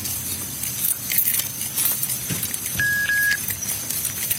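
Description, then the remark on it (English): Keys jangle and clink in irregular bursts, with bright metallic rattles against a steady background hiss and a brief faint tone partway through. “Hey, we got the keys! You guys can get in with me. I got them.”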